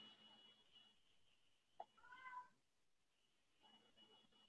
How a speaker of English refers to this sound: My cat is crying outside of my room now.